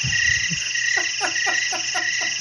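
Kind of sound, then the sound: insect, crickets chirping sound effect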